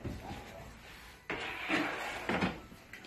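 A preheated oven's door swings open with a clunk, followed by a rack scraping and a dish of cod sliding in, then another thud as it shuts; a few sharp, moderately loud noises with no talking.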